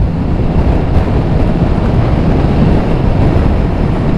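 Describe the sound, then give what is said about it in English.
A Moto Guzzi motorcycle's V-twin engine rumbles steadily and loudly while riding, a deep continuous throb blended with rushing wind noise, with no voices. “I've got a characterful rumble coming from the engine down below.”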